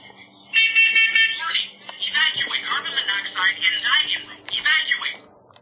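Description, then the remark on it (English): A carbon monoxide detector sounds a loud, shrill electronic tone, followed by a synthesized recorded voice warning with brief alarm bursts between phrases, clear. “So I've just moved back to the CO detector, and that's how they work.”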